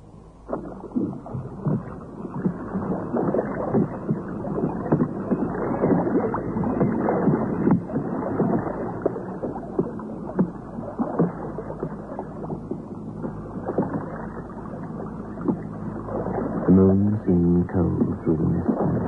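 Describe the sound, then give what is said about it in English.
A boat moves steadily through water, with continuous sloshing and splashing, a rough, churning wash that stays fairly loud throughout, with a brief burst of harder knocks near the end. “And then he found the boat.”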